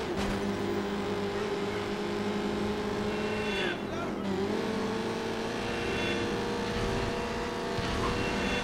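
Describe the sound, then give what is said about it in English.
The throaty engine of a Bestia car roars steadily and loudly throughout, its deep droning pitch holding level, then briefly dipping and wavering midway before climbing back as the car drifts. “Yeah, it takes longer to get going, but it's got a big throaty. And it really takes the drifting well. Shit roars.”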